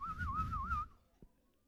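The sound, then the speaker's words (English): A person whistles a wavering, warbling tune back to the birds in imitation of birdsong for under a second, fairly loud, then it cuts off into near silence with a faint click. “You can even whistle back to the birds.”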